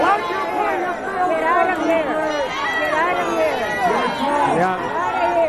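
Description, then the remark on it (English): A large crowd murmurs and calls out at once, a dense, steady wash of overlapping voices with no single speaker standing out, holding a restless, disapproving tone throughout. “I love when I hear a crowd turn.”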